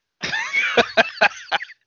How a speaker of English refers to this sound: Oh, I haven't coughed all day until I started laughing. And also, too, when you talk more, it dries out your throat and it's itchy. And that makes it coughing, too.